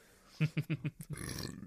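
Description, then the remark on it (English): A croaky burp breaks into five quick guttural pulses, then trails off into a soft, breathy rush of noise. “Also, I can burp in these freely.”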